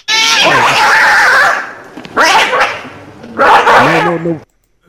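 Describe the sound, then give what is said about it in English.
A dog named Blossom growls loudly in three drawn-out, grumbling bursts after being called a prima donna, each burst rising and falling in pitch, with brief pauses between them and no one talking. “Called Blossom a prima donna, and I got growled at.”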